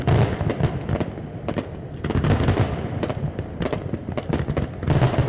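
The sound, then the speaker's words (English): Fireworks shells, from 3-inch up to 10-inch, bursting at a fireworks display in a rapid, irregular barrage, sharp booms and crackles overlapping continuously with a rumbling low-end wash, loud throughout. “If the music changes, the fireworks will change.”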